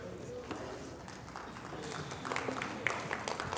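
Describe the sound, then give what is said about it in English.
A few scattered hand claps, about two, ring out sparsely over a murmuring crowd at a church service, with grunts from the back, faint rustling and low voices filling the gaps between the isolated, uneven claps. “Thank you for those two hand claps and the nine grunts in the back.”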